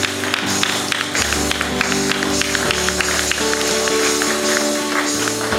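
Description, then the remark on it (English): A church audience stands and claps hands for Jesus for several seconds, a dense, steady patter of many sharp claps over a sustained tonal backdrop that sounds like held music notes. “Let's give a hand clap to Jesus for what he's done and what he's continuing to do.”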